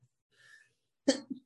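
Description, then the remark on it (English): A sneeze: a soft, breathy intake of air, a short pause, then one sharp, loud explosive burst that trails off into a smaller second puff. “Bless me. Bless you.”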